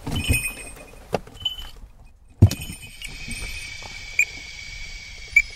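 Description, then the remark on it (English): Small metallic bells on Emmy, a dog, jingle in bright, scattered bursts, a few sharp clinks standing out over a soft rustling background, as she runs off after the car door is opened. No one speaks. “You'll hear her bells. There she goes.”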